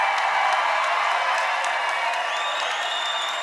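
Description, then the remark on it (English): A large church audience cheers and applauds its pastors loudly and steadily, dense clapping mixed with shouts and whoops, with a few high whistles rising near the end. “Now let's cheer for your pastor.”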